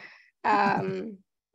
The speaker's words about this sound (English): Goodness, I'm still yawning and just trying to be here. Just trying to be here now.